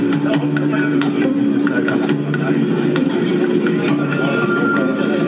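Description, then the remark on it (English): Recorded on board a train travelling through snowy countryside in Japan: a loud, continuous rumble and low hum at a steady pace, with faint rhythmic clicks and rattles from the tracks recurring throughout. “So I do have this very quick footage that I took on the train.”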